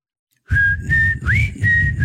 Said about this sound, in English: But whenever I try to think of whistling in songs, I can only think of ….